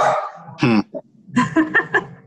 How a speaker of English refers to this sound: Sorry, guys. My dogs are barking. I thought they were asking a question.